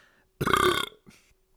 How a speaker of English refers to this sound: No, that's not the tip. That's just a gross joke where I burp into the mic as a tip to get self-respect. If that is funny on some level, let me know. I'm gonna leave that shit in there.